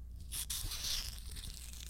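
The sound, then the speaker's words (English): A bottle of a grape juice type drink being opened: a muted, breathy hiss with a rough, tearing rustle that runs for under two seconds, with no sharp pop. “For the audio listeners, that was the fucking bottle.”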